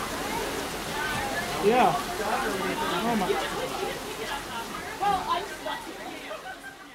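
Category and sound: nature, heavy rain pouring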